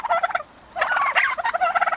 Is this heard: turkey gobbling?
yes